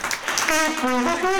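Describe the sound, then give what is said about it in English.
Audience applause welcoming comedian Cash Levy, a steady wash of clapping that runs through the whole short clip, with a sustained, slightly rising voiced cheer or holler riding over it from about halfway. “Ladies and gentlemen, Cash Levy, give a round of applause!”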